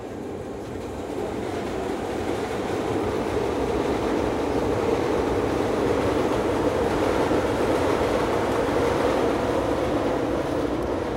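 A train rumbles along the rails, a steady low roar with dense rattling clatter that swells slightly in the first few seconds and then holds loud and even, with no voices.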